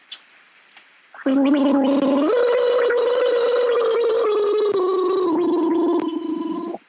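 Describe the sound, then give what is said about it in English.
After a couple of faint clicks, someone gargles loudly with too much water for about five and a half seconds: a buzzing, bubbly, voiced gurgle that shifts up in pitch once, then holds steady until it stops. “Hang on, I'll do that again. I've got too much water.”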